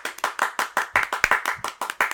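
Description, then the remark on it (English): Hands clap steadily and fairly quickly, about a dozen sharp, bright claps in an even rhythm, with no voices over them. “If I had a little sound machine, I would clap for so long right now.”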